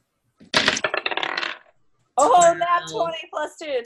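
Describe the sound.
A quick clatter of dice tumbling across a hard tabletop for about a second, fairly loud, rolled for a dexterity saving throw in a tabletop role-playing game, followed by a person speaking after a short pause.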